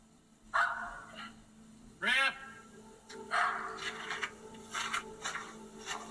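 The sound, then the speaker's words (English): A dog barks several times in short, irregular bursts, sounding slightly thin as if played back from a video, with a steady background hum and no talking. “First of all, I believe this video because dogs are something that if he ran out there and he started barking and he got scared, dogs are bold.”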